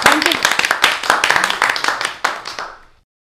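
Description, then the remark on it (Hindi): Loud audience applause for all the competing teams after the final scores are announced: many hands clapping in a dense, crackling burst that holds steady for about three seconds, then trails off quickly into silence. “भाई सभी टीमों के लिए जोरदार तालियां और सभी का धन्यवाद।”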